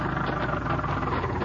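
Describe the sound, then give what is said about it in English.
A car engine rumbles steadily with a low, throaty drone and some rattling vibration as the car drives across a field, holding an even loudness throughout, with no voices. “There's his car coming across the field.”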